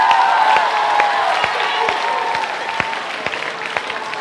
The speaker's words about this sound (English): So just, yeah, let's give them one round of applause. Woo!